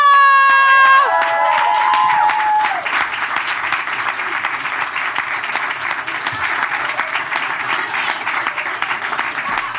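Loud, steady applause from an audience fills the whole clip, with cheers and whoops rising over it at the start, where a brief musical flourish plays, then settling into sustained clapping.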